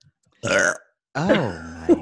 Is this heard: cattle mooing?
no